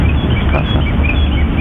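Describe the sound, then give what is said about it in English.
Faint, high bird chirps repeat sporadically outdoors at a cemetery in northern New Jersey, beneath a heavy, steady rumbling hiss of background noise that dominates the short recording. “Now, with this one, they shot this outside at a cemetery, and so there's what I believe to be birds chirping in the background.”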